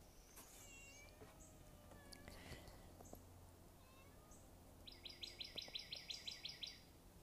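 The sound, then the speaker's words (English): A female cat, while hiding, lets out a few soft, drawn-out meows, followed by a rapid string of high bird chirps, all quiet against faint outdoor background noise. “She's kind of hiding and talking at the same time.”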